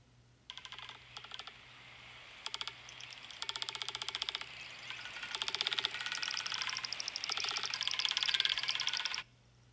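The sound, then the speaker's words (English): A magnificent frigatebird's call, played from a YouTube clip into a microphone: dry, rapid clattering rattles in short bursts that lengthen into a nearly continuous, louder rattle before stopping abruptly. A low steady hum runs underneath, and no one speaks. “That is the magnificent frigate bird.”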